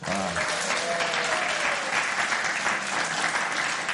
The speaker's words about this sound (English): I'm even more delighted that they gave you a clap. We need to do this more often. That's terrific.